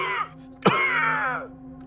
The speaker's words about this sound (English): A deathly cough started to choke her out.